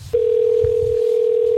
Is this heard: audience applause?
no